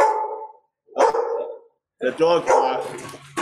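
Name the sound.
pit bull dog barking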